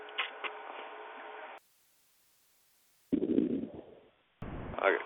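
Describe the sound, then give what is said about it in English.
Tinny hammering heard over a caller's phone line into a call-in show: a few sharp knocks over a steady hum, a pause of near silence, then louder, heavier thumping bursts with a low rumble underneath. “917, quit that damn hammering and I'll unmute your line.”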